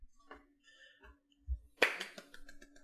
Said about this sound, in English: Thunderous roaring applause. Thunderous roaring applause. Man, you can hear that applause all the way in Houston from San Antonio. That's amazing.